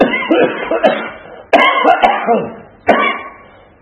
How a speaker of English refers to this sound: Excuse me. If I cough again, I'm not going to say excuse me, but I mean it.